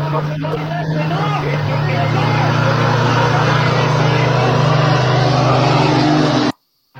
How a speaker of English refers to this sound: And this truck runs a 12-second quarter mile. Yep, so he runs in that 12.